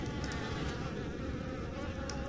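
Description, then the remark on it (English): A dense swarm of bees buzzes continuously and loudly, a thick steady drone with a low hum and faint higher whines, without any voices. “I can't hear anything over these bees.”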